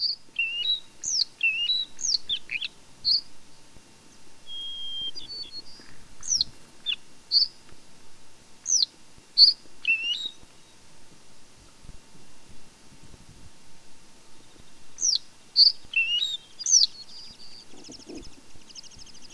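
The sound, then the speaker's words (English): A bluethroat sings alone, mimicking an American golden plover's call: bright, high chirps and whistled notes in quick bursts with short pauses, fairly clear against a quiet background. “Listen while this wonderful bird mimics the American golden plover.”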